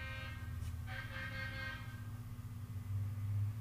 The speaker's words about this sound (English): Sorry, I think the train wanted to say something. It did, yes.